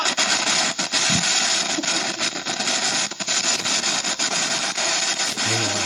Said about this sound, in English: What actually happened was that firework went into their entire stash of fireworks.